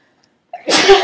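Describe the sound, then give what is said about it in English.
A single loud sneeze bursts out after a brief quiet moment, with a sharp breathy inhale leading into a forceful, noisy explosion of air. “Bless you. Excuse me.”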